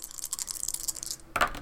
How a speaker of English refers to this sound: Okay. I rolled 8 dice. I didn't get a single success.